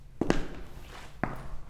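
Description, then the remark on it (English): Sharp, hard-soled dress-shoe footsteps click on a firm floor in a pitch-black room, getting closer: a quick pair of steps followed by another about a second later, crisp against a quiet background. “They're getting closer. They have a very stiff click to them.”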